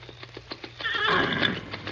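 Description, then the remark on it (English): Hooves clop in a steady rhythm, then Silver, a stallion, lets out a loud, drawn-out whinny that rises and trembles before fading. “Man alive, what a horse.”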